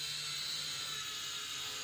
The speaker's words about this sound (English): Why is there a drone in the lodge? There appears to be a flying drone of some kind. Oh, it's gonna hit the projector. Oh, not on the altar! Not on the altar!